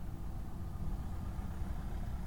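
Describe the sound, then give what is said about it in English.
A steady, low engine rumble from a car outside, droning evenly without much rise or fall, moderately loud and continuous with no one speaking. “Having to pause for cars every time they get past them, thinking shit.”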